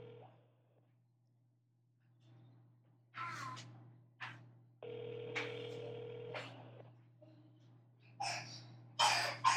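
An outgoing phone call to a man who does not pick up rings once: a steady, moderately loud ringback tone lasting about two seconds, surrounded by coughs, throat noises and a constant low hum.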